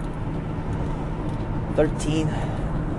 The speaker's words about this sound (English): And I'm driving in my shitty ass 2006 Chrysler.